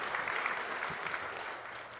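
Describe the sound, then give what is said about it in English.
A church audience applauds a man who shared his story, steadily, a dense, even wash of many hands clapping at a constant moderate level with no voices rising above it. “So everybody give Kendrell a round of applause.”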